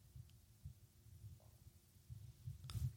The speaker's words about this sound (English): Do you just hear my stomach? My stomach's making growling noises. My stomach growls like an animal sometimes. I need to get something to eat.